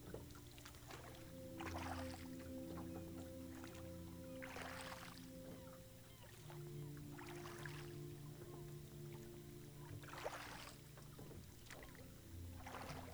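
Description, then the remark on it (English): A boat glides through calm water on a gentle current with a steady low engine hum, while rhythmic splashes and swishes of water rise and fall every couple of seconds. “the gentle pulse of the current feels relaxing.”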